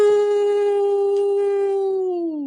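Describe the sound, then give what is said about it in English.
A single long wolf howl, loud, holding one steady pitch for a couple of seconds before sliding downward at the end, with no other sounds around it. “As always, continue to find, follow, and live your truth and follow the wolf within you. Howl!”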